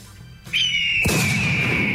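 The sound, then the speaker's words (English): A high, steady whistling tone starts, then a sudden loud gunshot sound effect bursts in with a heavy low thump and a rough, noisy tail that keeps ringing under the whistle. “Did you just shoot a bird?”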